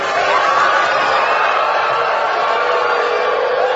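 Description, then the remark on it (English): A large crowd at an opioid awareness event in Baltimore roars with a blend of cheering and booing, a loud, steady wash of voices that holds without pause for the whole stretch. “So there was a mix. We could hear some cheering, obviously.”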